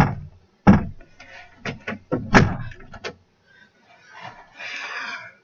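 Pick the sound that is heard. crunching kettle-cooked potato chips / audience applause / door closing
door closing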